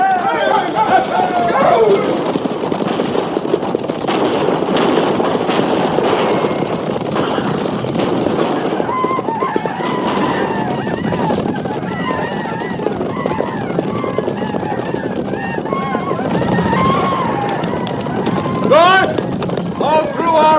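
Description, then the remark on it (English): A loud, sustained thunder of many galloping horses in a cavalry charge, hooves pounding continuously, with men's shouts and yells rising over the din throughout. “Stay low in the saddle, and we'll ride straight through.”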